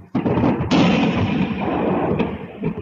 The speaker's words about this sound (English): Ukrainian air defense systems on the ground fired incoming Russian drones. These battles play out daily.